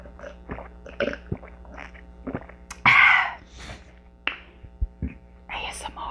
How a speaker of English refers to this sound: As you all know, when I do my podcast, I drink plenty of water. So if you hear me drinking water, you know what it is. So here's an ASMR for you people that like that.